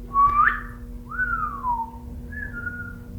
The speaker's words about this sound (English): Whistle.